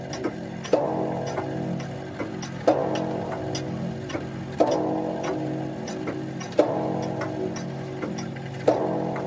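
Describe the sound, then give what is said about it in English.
A clock chimes the hour steadily, with five heavy, resonant strikes spaced about two seconds apart, each followed by a lingering metallic ring. It is fairly loud, with no voices. “And then, after the lapse of 60 minutes, which embraced 3,600 seconds of time that flies, there came yet another chiming of the clock.”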